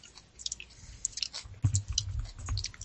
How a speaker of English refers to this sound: I was trying to breathe into my microphone. It's like by my neck. Am I still breathing into it? I'm eating.